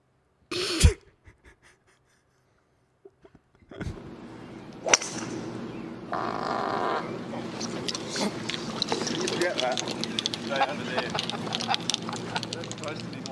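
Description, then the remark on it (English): A short, loud fart bursts out on a live golf broadcast, followed by a quiet pause, then a sharp crack and a steady wash of background noise with people talking. “This is the manna from heaven of live camera farting.”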